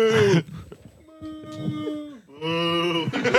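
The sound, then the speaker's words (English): A man's voice imitates a deep, drawn-out cow moo, more like a bull, several long low lowing calls in a row, loud, with brief pauses between them. “Why does that actually sound like a cow, bro?”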